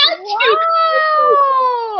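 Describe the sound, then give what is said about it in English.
A person on a reality TV show imitates a bird call with one loud, drawn-out vocal note that slides upward and then holds a steady, reedy pitch for about two seconds before trailing off. “So, this is our first bird call.”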